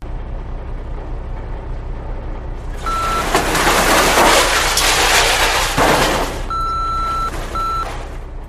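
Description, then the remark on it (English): A Russian military truck loaded with mines reverses with its high-pitched backup alarm beeping in short bursts over a steady engine rumble, and a loud rushing, hissing surge swells through the middle before easing off. “That was a truck full of mines that they apparently just put them back.”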